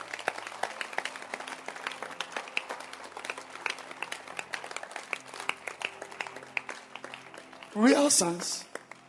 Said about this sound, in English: And we can clap our hands for satellite church pastors.